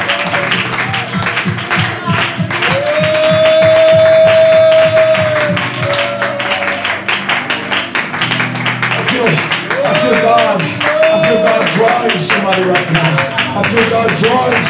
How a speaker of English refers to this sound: Oh, somebody clap their hands and praise Him right now.